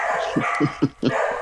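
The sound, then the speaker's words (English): A dog barks four times in quick succession, short sharp yaps at a fairly even pace, heard over a steady hissing background with no one talking. “I know, I'm sure it's just a dog walking by out front.”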